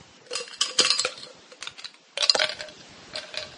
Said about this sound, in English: Is that ice or dice? Ice. Yes, I see that now, unless you are chomping on your dice.